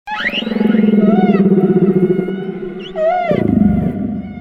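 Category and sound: animal, humpback whale song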